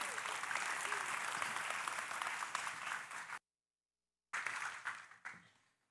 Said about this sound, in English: How about a round of applause for our brother